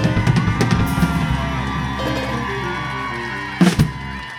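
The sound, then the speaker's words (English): A crowd at City Winery applauds and cheers for the show's host with whoops and yells in a steady roar, swelling into a louder burst of shouts near the end, with no speech. “Now, ladies and gentlemen, please give a big round of applause for your host,”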